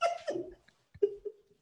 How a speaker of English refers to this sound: Oh, the dog. There's my dog. There's my dog. Protecting my dog. It's more loud than my kids right now.